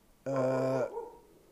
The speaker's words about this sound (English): And my dog's still going.